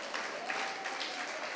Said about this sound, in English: If you decide to clap, clap as if you're giving praise to the Lord.